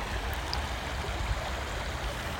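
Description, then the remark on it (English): A steady, continuous rush of flowing stream water, fairly loud, with a constant low rumble and no voices or other sounds breaking through. “Before I go, like I mentioned earlier, this was the first time I've spoken next to water.”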